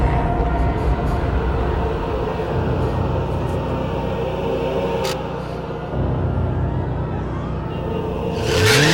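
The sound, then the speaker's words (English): A motorcycle ridden by the character Jean rumbles steadily and loudly, then revs up sharply in a rising whine near the end. No one speaks. “Cut to Jean on a motorcycle!”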